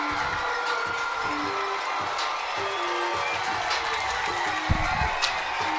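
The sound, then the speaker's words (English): The Opelika crowd at a high school football game against Auburn High School roars in a steady, dense wash of cheering and shouting, with a couple of sharper bursts near the end. “And the Opelika crowd makes its presence known here.”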